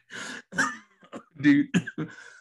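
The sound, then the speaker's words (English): A person coughs repeatedly, a run of about six harsh, rasping bursts with short gaps, somewhat like throat clearing, with no talking in between. “Dude, I make myself cough now.”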